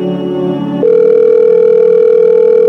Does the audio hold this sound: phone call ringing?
yes